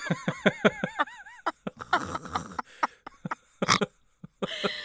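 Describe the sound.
A person imitates a dog barking, saying 'Kapawawauf': a quick run of short, voiced yelps, then harsher, breathy barks in uneven bursts with brief pauses between.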